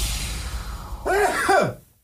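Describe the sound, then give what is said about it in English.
One sneeze in two parts: a breathy, voiced intake followed by a sharp, forceful burst that drops in pitch and cuts off. It is fairly loud, with no talking over it. “Bless you.”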